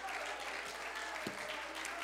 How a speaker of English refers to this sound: Clap your hands, everybody, and shout with a loud voice.